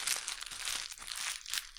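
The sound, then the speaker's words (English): A small Stach paper bag crinkles and rustles continuously for a couple of seconds, a dry crackling with brief swells in intensity and no voices. “is obsessed with the little Stach paper bags.”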